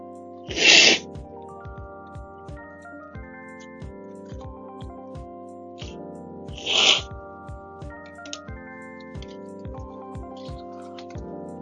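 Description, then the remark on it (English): Someone blows their nose twice, two short, loud, breathy bursts about six seconds apart, over quiet background music with steady plucked notes. “Gotta blow my nose.”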